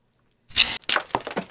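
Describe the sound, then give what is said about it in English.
After a moment of silence, the glass of a ship's right viewport cracks under a harpoon hit with a bright, sharp burst, followed by a rapid run of splintering crackles and ticks that sound loud and clear, with no talking. “This time, the right viewport now has a crack in it.”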